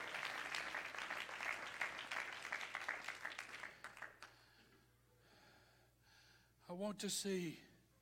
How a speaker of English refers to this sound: Everybody clap your hands and shout to the Lord.